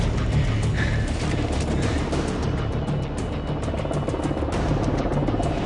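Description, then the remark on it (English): A loud, steady roar of helicopters coming in overhead to pick people up quickly after explosions in the bush, with a low rotor throb, holding constant throughout without any voices. “All right, the choppers are coming in. I see it right above me there.”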